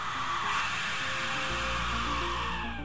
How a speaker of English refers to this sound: In 2013, a video of a man holding a skull-shaped instrument he calls a death whistle began making the rounds on YouTube. Once played, the death whistle sound is immediately unsettling.